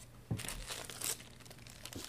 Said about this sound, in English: Just slap myself in the face with some money. I mean, worst case scenario, you get a paper cut in your eye, I guess.